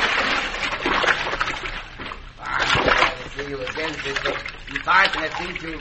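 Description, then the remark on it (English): Water splashes and sloshes in broad bursts, as if someone is moving through it, with a man's voice speaking over the splashing throughout. “Cisco, do not stay under the water.”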